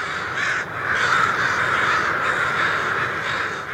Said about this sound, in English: locals have counted more than 100,000 crows. Not that the folks of Danville are especially happy about that. Imagine the ruckus when the first few thousand crows leave in the morning, about an hour before sunrise.